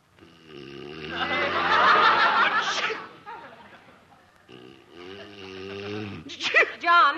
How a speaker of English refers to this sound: Gesundheit. Thanks.